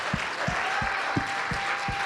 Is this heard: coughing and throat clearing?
no